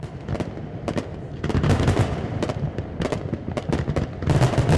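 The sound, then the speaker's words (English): Fireworks bursting in rapid, irregular succession, sharp cracks and booms overlapping one another against a low rumbling background, loud and sustained like a finale, at a fireworks show over North San Diego Bay in Southern California. “And the North San Diego Bay is a great spot to see fireworks.”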